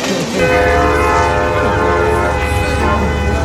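A train horn blares loud in Lindale, a steady chord-like wail held through the whole moment over the heavy rumble of the passing train.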